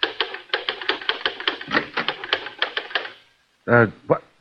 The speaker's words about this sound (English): As tonight's Inspector Thorne murder case opens, we see Christopher Hudson, the successful society writer, working at the typewriter in his study.